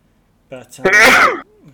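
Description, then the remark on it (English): A single loud sneeze: a short voiced intake of breath, then a sharp explosive burst that trails off, followed by a faint murmur. “Bless you.”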